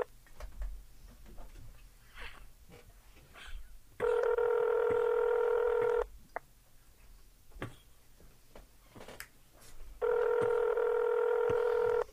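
Telephone tones over a speakerphone: two long, steady electronic tones, each lasting about two seconds and separated by a pause, loud and clear over faint clicks and background noise.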